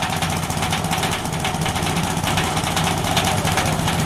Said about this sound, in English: They've also created a corn shelling machine, but how does it work?